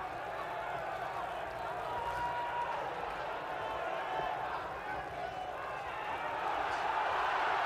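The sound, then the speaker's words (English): A large British boxing crowd roars with every exchange during a first-round bout between Minter and Hagler, in a dense, continuous din holding steady throughout and swelling slightly louder near the end, with indistinct voices blended into the noise. “You'll hear this British crowd roar with every exchange, particularly if one exchange favors Minter.”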